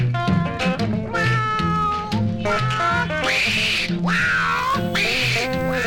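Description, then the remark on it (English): A voice imitates a cat, letting out several loud, drawn-out meowing wails in a row over a full band with a steady bass line and drums. “You just an old bear cat. Been scratching at my door. You can purr, pretty kitty, but I ain't gonna rub you no more.”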